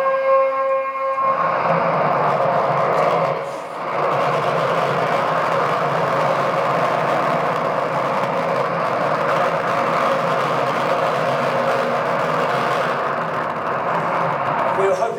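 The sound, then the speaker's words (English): The combustion engine of a hydrogen peroxide rocket car roars steadily and loudly as it gets up to speed before pumping the hydrogen peroxide, opening with a tonal whine that gives way to a broad, continuous rumble after a brief dip, holding strong throughout. “That's the combustion engine running, that's getting up to speed before it starts pumping the hydrogen peroxide.”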